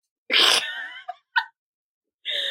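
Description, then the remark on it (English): A loud coughing fit: one harsh, drawn-out cough, then two quick short hacks, and after a brief pause another raspy cough, with no talking. “I keep coughing, help.”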